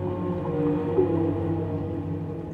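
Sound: blue whale vocalization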